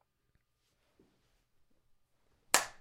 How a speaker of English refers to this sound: I'm not used to clapping with my left hand.